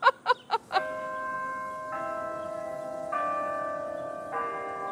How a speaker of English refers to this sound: That series of chimes is called the Westminster Quarters.